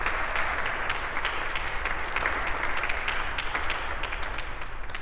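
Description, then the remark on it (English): A crowd claps steadily in sustained applause for the musicians who played the prelude and will play the postlude. Dense overlapping hand claps form a continuous bright patter that holds an even, moderate loudness throughout, with no voices rising above it. “So let's give them also a round of applause.”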